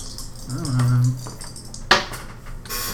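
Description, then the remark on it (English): Dice clatter and tumble across a hard tabletop during a tabletop role-playing game, in a quick series of light clicks with one sharper knock as they land, fairly crisp. “You know, I'm changing this dice. We're having bad luck with dice tonight.”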